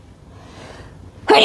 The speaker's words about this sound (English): I'm gonna sneeze, you guys. Just a sec.